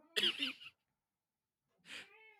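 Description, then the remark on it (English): A female cat meows twice, a short bright call followed after a pause by a softer, falling meow, both fairly quiet with no talking. “do you hear her meowing?”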